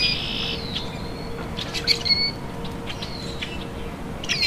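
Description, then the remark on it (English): A rusty blackbird gives squeaky, creaking high-pitched calls in several short bursts, some with thin whistled notes, over a steady low rumble of background noise. “The rusty blackbird was once an abundant, common blackbird species.”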